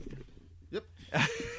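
A dog gives two short, sharp yelps, the second louder and harsher than the first, over a low steady hum with no one talking.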